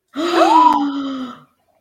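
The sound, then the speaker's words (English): Three people let out a loud, drawn-out gasp of surprise together at the mention of Aulani, rising in pitch then trailing off over about a second, with no speech. “We all make these gasping faces, but none of us have been.”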